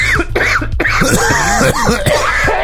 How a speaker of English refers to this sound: this dryness starts to, like, creep up my throat, and then I start coughing